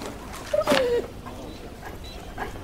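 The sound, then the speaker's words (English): A dog lets out one short, high whimper that slides downward in pitch, clear, followed by quiet background hiss with no talking; the dog is Robert Durst's, outside on a rainy night in a scene set in New York, 1982. “Robert Durst is outside with his dog.”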